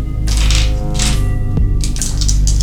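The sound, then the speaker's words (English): A handful of seven dice, rolled for weapon damage in a tabletop game, rattle and clatter loudly, a dense burst of clicking that pauses briefly and then tumbles again, with no one speaking. “So, on dog number 1, roll your 7 dice.”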